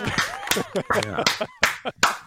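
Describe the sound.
Scattered clapping from a small live audience gathered around the host of a show, sharp irregular claps mixed with voices talking and calling out over them, moderately loud for a couple of seconds.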